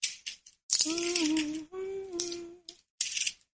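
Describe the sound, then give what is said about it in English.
Book pages rustle and crinkle in several short bursts as they are flipped to find a chapter section, while a voice hums a low sustained tone through the middle. “Let me just go there right now. for me, turning the pages.”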